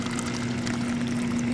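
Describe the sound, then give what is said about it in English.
At the largest desalination plant on the continent, in Carlsbad, California, the plant's technical manager pours desalinated seawater from a tap into a glass: a continuous splashing rush with a rising tone as the glass fills. No one speaks. “the plant's technical manager, pours a glass from the tap.”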